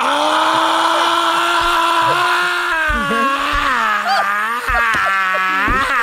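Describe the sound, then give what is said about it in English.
A loud, steady chainsaw buzz runs throughout, its whiny engine pitch dipping and rising in a few short revs, continuous with no voices over it. “Put that chainsaw on.”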